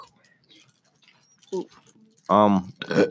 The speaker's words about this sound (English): Yeah, I have the best burp here, bro. I can let out. I can burp on command, though. So can I.